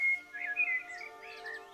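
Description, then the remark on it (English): A bird calls with a run of thin, high whistled chirps, steady, with no voices or other sounds around it. “Oh, Dithu, listen to this bird.”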